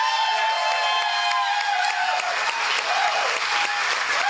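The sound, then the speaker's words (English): A crowd claps steadily after a five-minute routine ends, a dense, sustained wash of applause with a faint whoop or two rising above it, lasting the whole few seconds without a break. “I don't know why you're, I mean, I know you're applauding that because it's a thing that ended that lasted 5 minutes, but it wasn't a good thing.”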